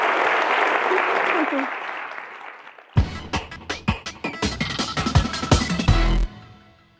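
A crowd applauds, a soft wash of clapping that bursts into louder, sharper, closely packed claps midway before cutting off abruptly.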